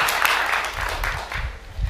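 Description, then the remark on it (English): A crowd applauds steadily, giving a last round of applause to a group of children, the adventurers, as they leave; many hands clapping in a dense, continuous patter at a moderate level with no voices standing out. “We'll give them all one last round of applause as they leave for now.”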